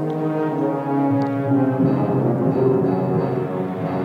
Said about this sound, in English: This is Garage's theme.